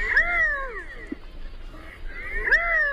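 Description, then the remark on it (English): Two drawn-out, nasal, cat-like meows from a male redhead, a diving duck, giving its courtship call, separated by about two seconds of quiet, clear with no talking. “And the redhead has something in common with another songbird, as the male utters a kind of meowing courtship call, a bit like a gray catbird.”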